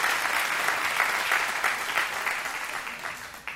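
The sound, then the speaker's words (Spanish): An audience applauds a group of young men, a dense crackle of many clapping hands holding at a fairly even level before easing slightly toward the end, with no voices standing out. “Un aplauso para estos muchachos.”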